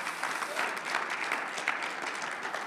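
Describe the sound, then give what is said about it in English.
An audience gives the Lord a hand clap, many overlapping claps blending into a steady, dense wash of applause, a sustained crackle at an even loudness throughout, with no clear voices. “And if you're thankful for that, would you give the Lord a hand clap, please?”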